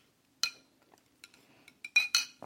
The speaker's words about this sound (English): I'm going to have a little sip of water.